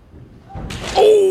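A single dull, heavy thud as a fainting man falls face-first onto a hard floor, fairly loud, followed by a brief tonal scrape or groan-like noise as the sound trails off.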